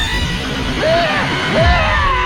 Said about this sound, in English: stop screaming. You're only scaring it. Look, it's up to you, but the more you scream, the more it's going to char your already battered body.